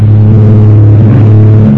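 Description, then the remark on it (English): A small private plane's engine drones loudly and steadily while flying through a terrific storm over the Transjordan Hills, between Cairo and Tehran, a deep, even hum with a rough rushing noise layered over it. No voices are heard. “Far over the storm-blanketed Transjordan Hills, somewhere between Cairo and Tehran, Ken Thurston and Pagan Zilschrift, in a private plane, battle a terrific storm.”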